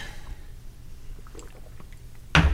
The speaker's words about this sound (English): There you go. I'm pouring one for the listener, too, so you can use your imagination. Oh, there we go.